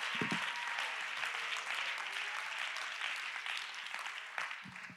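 An audience claps their hands together in a dense, sustained burst of applause that stays steady and fairly loud for the whole stretch, with no voices standing out.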